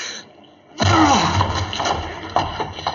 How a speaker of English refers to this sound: The door's locked. We can't get in. Break it down, then. Help me, Watson. One, two.